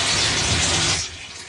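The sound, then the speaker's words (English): Torrential rain at a camp pours down in a dense, loud, steady hiss with a low rumble beneath, then eases slightly to a softer wash for the final half second. “This rain is so tumultuous. I can't believe it's actually torrential as well.”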